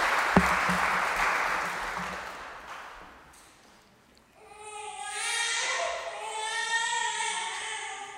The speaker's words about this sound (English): You can take your seats, guys. Give them a little clap as they go back.